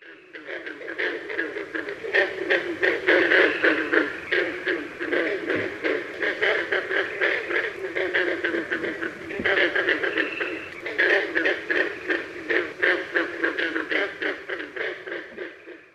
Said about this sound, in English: Next up to call in the NCTC ponds are the northern green frogs, the males sounding like the strum of a banjo.